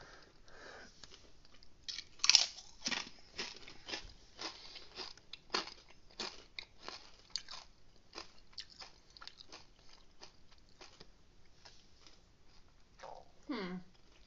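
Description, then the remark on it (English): Crunchy Cool Ranch Doritos chips being bitten and chewed, a steady run of sharp, dry crackling crunches with one louder bite early on, ending with a brief low hum of a voice. “Alright, I'm going to take a bite.”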